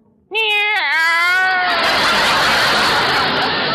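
A single loud, drawn-out meow with a wavering pitch from a female cat, fading into a steady wash of broad hissing noise lasting until the end.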